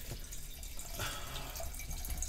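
Wine pours steadily from a box into a glass for a couple of seconds, a continuous trickling splash with faint drips and a slight rise in pitch as the glass fills.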